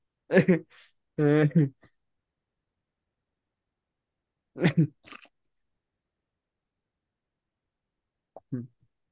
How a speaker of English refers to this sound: I don't know why this cough came back.